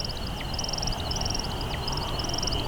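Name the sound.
bird chirping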